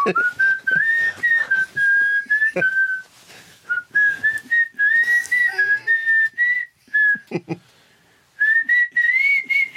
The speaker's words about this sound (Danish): Der er helt stille i kvarteren nu. Jeg tænker mig at fløjte den næste kvarter.